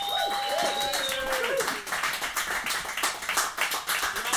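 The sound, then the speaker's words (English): An audience breaks into dense, steady applause for comedian Jason Byrne that fills the whole stretch, with a few brief high tones sliding in near the start before the clapping carries on alone. “Let's give a big round of applause for Jason Byrne.”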